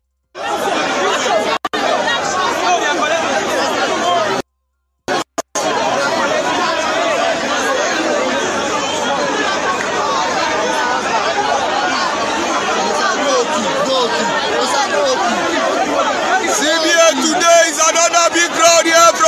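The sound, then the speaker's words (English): A dense crowd thronging the Central Bank of Nigeria office in Lagos fills the air with loud, continuous overlapping chatter and shouting voices, a steady babble with brief cut-outs, swelling slightly near the end. “The Punch tweeted a video of crowds thronging the Central Bank of Nigeria office in Lagos.”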